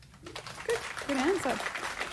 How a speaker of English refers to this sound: Good job. Yeah, clap for that.